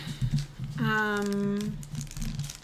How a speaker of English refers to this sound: This is me. ASMR in this plastic bag.